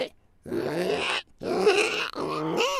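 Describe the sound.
A voice imitates a pig as the voice of a creature, making three rough, squealing snorts in quick succession, each a raspy, strained burst drawn in on an inhale, fairly loud with no talking.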